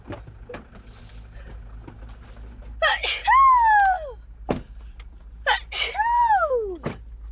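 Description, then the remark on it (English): Two sharp sneezes a few seconds apart, each a breathy burst sliding into a short voiced tail, fairly loud over a quiet room hum. “Bless you.”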